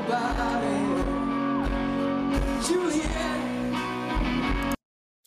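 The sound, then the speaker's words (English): A woman's high-pitched scream cuts through a loud live concert, rising above the pounding band and crowd noise before everything stops abruptly. “Those, you know, that girl screaming, everybody's had that person at a concert.”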